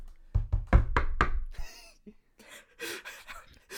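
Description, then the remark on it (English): Five quick, solid knocks on a door by two people, loud in a fast run, followed by breathy, gasping exhalations. “We both Hello? Knocked.”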